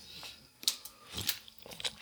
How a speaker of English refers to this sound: Excuse me, I need to take a sip of water here.